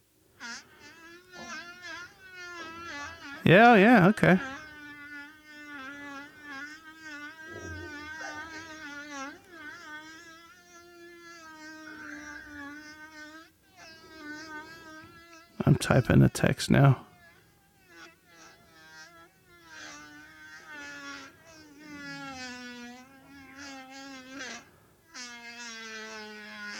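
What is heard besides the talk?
long fart sound effect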